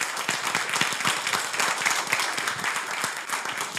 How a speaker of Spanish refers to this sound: Amén. Si le dan un aplauso, denle aplauso al Señor.